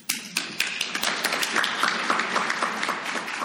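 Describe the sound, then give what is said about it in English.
A conference audience claps steadily for the panelists, many hands producing a dense, crackling wash of applause with sharp individual claps standing out, building quickly and holding at a full, even level throughout. “And please continue that applause for our wonderful panelists.”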